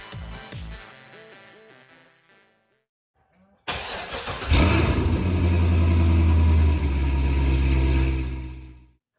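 After a short musical snippet and a brief pause, a Corvette sports car engine cranks to life and roars loudly, revving up into a deep, sustained rumble.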